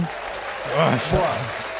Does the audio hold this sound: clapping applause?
yes